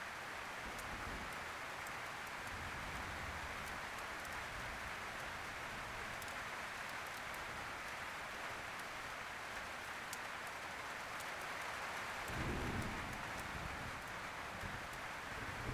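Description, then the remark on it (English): Steady rain falls outdoors in a forest, a continuous soft hiss scattered with fine droplet ticks, heard through an open window, with a brief low rumble of wind partway through. “One of the windows is open, and you notice a cool draft carrying the forest's earthy fresh scent, damp from the rain.”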